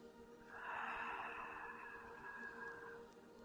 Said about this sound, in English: And keeping the tip of the tongue on the roof of the mouth, take a full breath in through the nose, allowing the belly to soften. And as you exhale, release the tongue from the roof of the mouth and let the breath move out through the mouth.